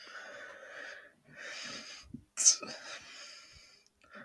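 human body sound, sneeze

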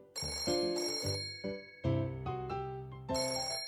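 household object, telephone bell ringing

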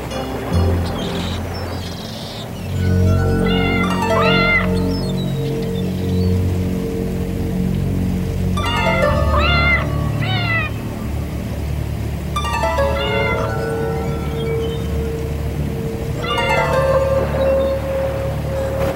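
animal, cat meowing repeatedly

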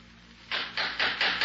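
impact, knocking

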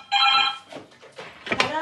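signal or alarm, telephone ringing

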